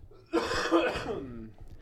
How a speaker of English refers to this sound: Hold on, I have to cough again.